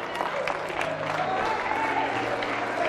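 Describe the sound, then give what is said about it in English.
An audience claps hands in praise, thanking the Lord, in a steady, dense burst of applause, with a faint murmur of voices and a low sustained tone running underneath throughout. “Come on, clap your hands.”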